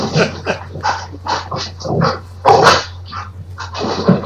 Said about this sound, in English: That noise that you are hearing in the background part of Master Debaters. Spooky's dogs.